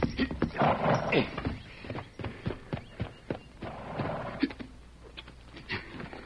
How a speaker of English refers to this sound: Come on, fella, get up there. Looks like somebody lying on the trail. There's his horse standing nearby. Oh, there, ho, boy, ho.